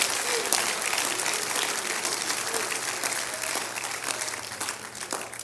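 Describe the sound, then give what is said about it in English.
A church audience claps hands to the Lord to affirm belief in the resurrection, in a dense, sustained burst of applause that holds steady for several seconds, with faint voices mixed underneath. “Clap your hands to the Lord if you believe it.”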